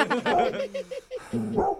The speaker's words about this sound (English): Is that Agnes? That's their dog, right? Yeah, it is. But I don't know where. I don't know where she is.